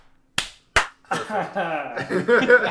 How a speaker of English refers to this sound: Should we do a 1, 2, 3 clap? No, it's just a clap. Clap.